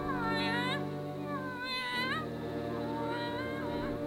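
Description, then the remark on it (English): A black tomcat named Jerry meows three times, each cry drawn-out and wavering, spaced about a second apart. The meows are fairly loud over a low, steady background hum. “Yes, it's a cat.”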